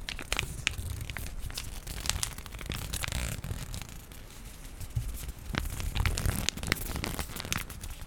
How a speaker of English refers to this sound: Just comes in this nice little bag, so we're gonna play with that for a bit.